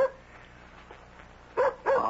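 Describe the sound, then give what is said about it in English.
After a near-silent stretch, a dog at the door lets out two short, high-pitched yelping barks in quick succession, loud and whiny in tone, with no voices present. “at the door with my dog.”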